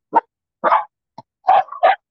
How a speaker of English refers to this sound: Well, that's really good timing. The dog starts barking to mark the end of our conversation.